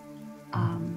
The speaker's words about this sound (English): The rain is coming down. It has put out quite a few of the fires at this point.